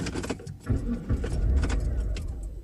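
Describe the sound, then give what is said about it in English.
Keys jingle, then a car engine cranks with a low, sputtering rumble that never catches, fairly loud for a couple of seconds, with no one talking. “Car won't even start.”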